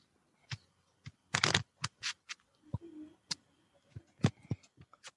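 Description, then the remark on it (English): Papery snaps and rustles of tarot cards being shuffled by hand for a reading, irregular and crisp, with a denser riffling burst early on, then scattered taps and flicks. No one speaks. “So I'm shuffling and tell me when to stop.”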